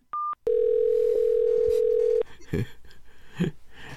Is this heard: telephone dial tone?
yes